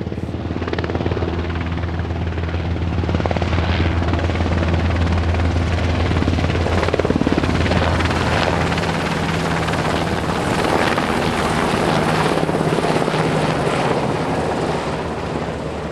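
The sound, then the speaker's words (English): A military helicopter drones steadily overhead on a summer evening, its rotor thumping in a continuous low rumble with breathy wind noise, loud and sustained throughout with no voices. “I've been listening to a military helicopter on a summer evening, and I hope this episode helped to remind you that that sound is not inevitable.”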